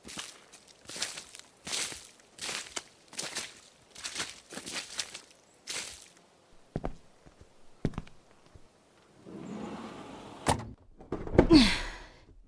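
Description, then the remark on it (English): Steady footsteps walk inside a house, then a couple of sharp thuds as a glass door shuts, followed by a few seconds of heavy scraping as a shelf is pushed back in front of the glass door, ending with a loud knock. “We pushed the shelf back in front of the glass door”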